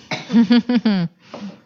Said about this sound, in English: It made me cough a little bit it there. It did. It almost has a bite to it. I did not anticipate.